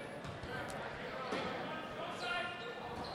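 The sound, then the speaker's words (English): A basketball is dribbled on a hard court during a LaSalle game, a few bounces rising from steady arena crowd noise as Stukes dribbles out of trouble. Indistinct voices murmur underneath. “Now they throw it into Stukes, dribbles it out of trouble, and is fouled by Anthony Woodard, the junior.”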